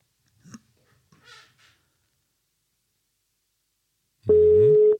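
telephone ringing tone

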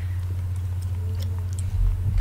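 chewing

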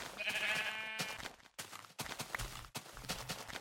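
sheep bleating

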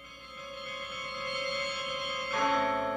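church bells chiming

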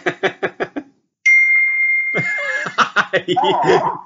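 computer notification chime

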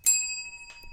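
bell being struck

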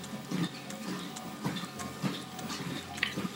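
drinking water

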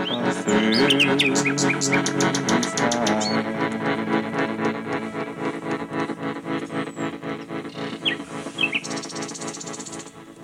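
nightingale singing

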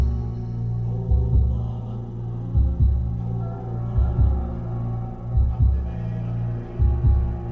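heartbeat

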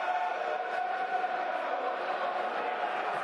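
football crowd cheering

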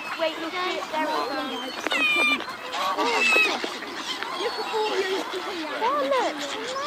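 geese honking

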